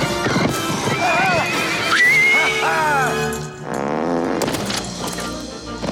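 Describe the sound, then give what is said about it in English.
A horse whinnies loudly with rising and falling neighs during a horse jumping scene, mixed with busy clip-clopping hooves and bustling noise, prominent throughout. “Oh, it's the horse jumping scene.”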